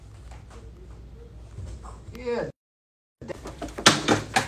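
A door creaks open with a squeaky, rising groan over low background noise, then a brief silence before a louder burst of clattering sound.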